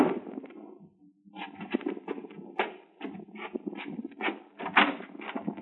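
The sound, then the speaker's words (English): A run of sharp, hollow knocks on a hotel room door at noon, irregular, with a brief pause near the start and a low murmur of background sound underneath. “It was noon when I was awakened by a knock on the door.”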